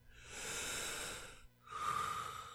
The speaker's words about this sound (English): Try measured breathing exercises where you count the lengths of your breaths to relax your body.